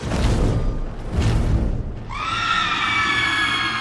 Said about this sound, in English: A shadow passed over me, a giant mass blocking out the sun momentarily. I barely had time to process what was happening when a deafening screech filled the air.